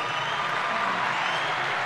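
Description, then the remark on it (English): A crowd applauds a guest, the director of Flex Public Relations, in a dense, steady wash of clapping that holds at an even, fairly loud level throughout, with no distinct individual claps or voices standing out. “Great crowd. Oh. Right on cue.”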